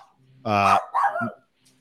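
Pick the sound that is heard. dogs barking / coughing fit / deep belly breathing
dogs barking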